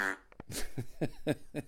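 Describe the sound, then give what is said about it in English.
A voice imitates a fart with a sputtering mouth noise, a short blast followed by four or five evenly spaced, buzzing pulses, fairly loud, with no other talking. “I farted. Everybody farts.”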